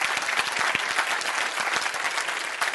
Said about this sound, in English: I'm waiting while you clap your hands here.